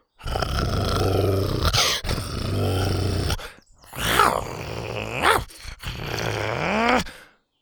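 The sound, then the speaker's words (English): Deep, rumbling growls from several dinosaurs, Buck and the triplets, lowering their heads, rising and falling in long throaty bursts with brief pauses between, fairly loud, one ending in a drawn-out groaning snarl. “Buck and the triplets lowered their heads and growled.”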